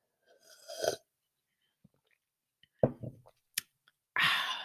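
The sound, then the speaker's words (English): A short slurp of grape juice, then a few wet mouth clicks and gulps as it is swallowed, ending in a breathy, satisfied exhale. No one speaks. “Okay, let me take a sip of my grape juice because I'm excited about today's episode.”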